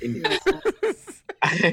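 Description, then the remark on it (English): A few short, breathy laughs give way to a brief pause, then a single loud sneeze bursts out at the end. “Bless you.”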